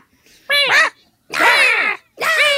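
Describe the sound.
A voice imitates crow caws: three loud, harsh, drawn-out calls, each separated by a brief pause, with no other sounds around them.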